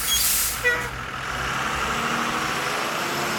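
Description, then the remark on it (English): A large bus lets out a loud hiss of air brakes, then its diesel engine rumbles and idles steadily. No one speaks. “But one day when I was coming back on the bus, I got on, and as I got onto the bus,”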